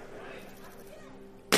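A low steady hum runs quietly for over a second during a product unveiling demonstration. Then a single sudden, loud, sharp crack of a metal ball striking armored glass cuts in abruptly at the end as the glass is tested.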